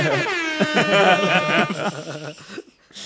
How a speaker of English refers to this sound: Boom, boom. Put in the fucking air horns right here.